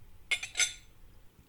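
glasses clinking

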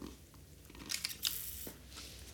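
sipping a drink

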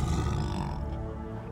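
tiger growling

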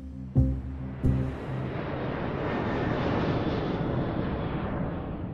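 airplane engine

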